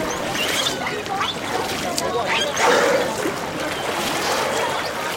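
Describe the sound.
Two volunteers repeatedly scoop and pour water onto a stranded 18-foot whale weighing about a ton, lying half out of shallow water in the sun, to keep it cool. The splashes and trickles include a fuller splash near the middle, over a constant outdoor wash and faint indistinct voices.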